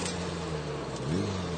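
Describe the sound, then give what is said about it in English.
A postman's small motorbike approaches in the mountains of Japan, its engine humming with a steady, buzzing mid-pitched drone, growing slightly louder, then revving briefly upward in pitch toward the end. No one speaks. “While we chat in the shade, here in the mountain, approaches the noise of a small motorbike.”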